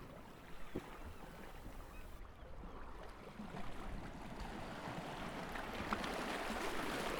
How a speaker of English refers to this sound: The sound of the sea envelops you.